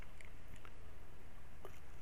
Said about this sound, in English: Sip of water. I'm really drying out because we're getting to the end of our hour